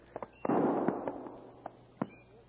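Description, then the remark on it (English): Gunshots in the distance: a series of sharp, cracking reports, one heavier blast rolling into a long rumbling echo, followed by a few smaller scattered pops against quiet background hiss. No one speaks. “No, he said he'd shoot 3 shots if he found Brown first.”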